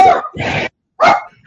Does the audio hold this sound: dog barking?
yes